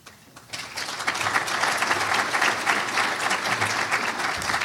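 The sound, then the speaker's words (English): An audience at a recorded event breaks into applause before the full program, a dense, steady wash of many hands clapping that swells in the first half second and then holds at a full, even level throughout. “You're going to hear applause, and then you'll hear the full program with Sam, John, and Steve.”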